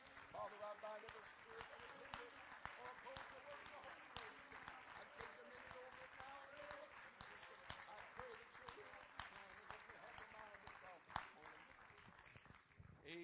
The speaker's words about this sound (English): Can we clap our hands to the Lord?